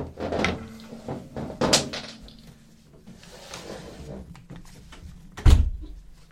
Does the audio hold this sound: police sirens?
no